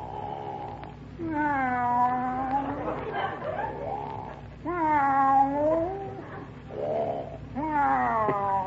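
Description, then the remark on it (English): A cat yowls and meows in long, wavering, drawn-out cries, three separate bursts with short pauses between them, fairly loud, heard from another room over a faint steady background hum. “What's he doing? Taking a cat nap.”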